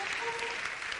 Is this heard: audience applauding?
yes